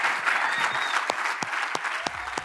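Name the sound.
audience cheering and applauding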